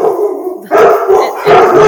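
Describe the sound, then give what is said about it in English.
Three big dogs barking loudly, a steady run of overlapping, slightly howling barks with two sharper bursts, and no talking over it. “What kind of dogs do you have?”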